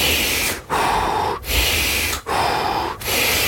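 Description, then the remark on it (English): Forceful, rhythmic Wim Hof breathing, drawing in through the nose and blowing out through the mouth, about five loud breaths back to back with only brief pauses, with no talking. “And then, so like the basic Wim Hof breathing is in the nose, out the mouth.”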